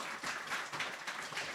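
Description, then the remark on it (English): Audience applause: a dense, steady crackle of many hands clapping together for a brief moment, fairly soft throughout, with no voices over it. “Round of applause.”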